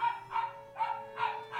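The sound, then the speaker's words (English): A small dachshund barks repeatedly in quick, yappy bursts, about five sharp barks in a steady rhythm, moderately loud, with a faint steady hum underneath. “Her little dog in the back begins barking.”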